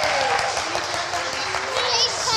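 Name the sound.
round of applause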